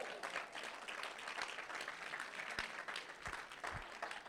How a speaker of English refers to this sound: Let's clap it up before I go on.